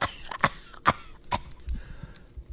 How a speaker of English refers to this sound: Remember that talking point about a year ago when everybody was speculating, is she okay? She's coughing.